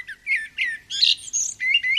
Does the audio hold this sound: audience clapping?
no